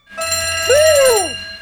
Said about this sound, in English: Ah, it seems the door has been alarmed. Gee, it's like they've got escaping prisoners in the building or something.